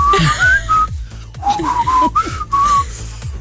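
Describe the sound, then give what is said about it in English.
A person whistles the McDonald's advertising jingle, a few quick melodic phrases with brief pauses between them, fairly loud over a low background hum. “Trying to do the McDonald's whistle.”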